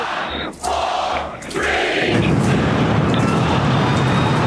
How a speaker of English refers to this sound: The Super Heavy booster with 33 rocket engines blasted off from the Gulf of Texas carrying its next-generation Starship cruise vehicle.